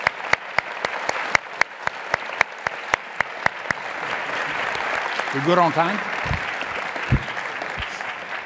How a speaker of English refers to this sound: Okay, how about a big round of applause